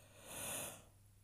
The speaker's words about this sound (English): Honestly, and I'm going to continue to yawn